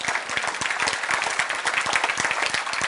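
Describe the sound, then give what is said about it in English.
A crowd applauds steadily, many hands clapping at once in a dense, continuous patter that holds at a fairly even loudness throughout, with no voices standing out. “I'm going to wait while you clap your hands.”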